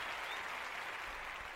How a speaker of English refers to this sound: So Thank y'all. I'm gonna give y'all round of applause. That's also for myself too.